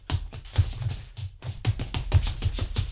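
Quick, steady tapping on a door, a dozen or so light knocks in an even rhythm with a short pause partway through, moderately loud, with no voices.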